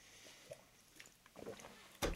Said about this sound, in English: Had to get another drink of water here.